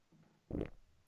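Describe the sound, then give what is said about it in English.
A single short, low, rumbling burst, a fart-like noise a person produces with the throat, comes through once in otherwise quiet surroundings, with a faint thump right at the end. “My oddest skill is I can fart with my throat.”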